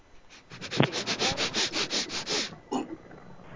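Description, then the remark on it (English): A dog sniffs rapidly at a phone, a quick run of about a dozen short, breathy snuffles in a steady rhythm, followed by one last sniff after a brief pause. “Sorry, he's sniffing the phone.”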